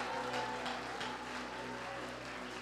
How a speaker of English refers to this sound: Now that you're clapping your hands, would you lift your voice and begin to praise the Lord? While you're clapping your hands, open your voice and praise the Lord.